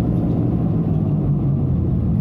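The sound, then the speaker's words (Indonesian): A car rumbles with a steady, low engine drone that holds an even loudness throughout, with no voices over it. “Weh, itu mobil mau ikutan lah.”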